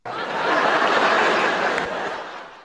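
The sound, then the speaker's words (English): A canned laugh track from a stock soundboard swells in at once, a dense crowd of chuckles and laughter holding steady for a couple of seconds before tapering off, with no talking over it. “And then there's the laugh, which will obviously never be used on this show.”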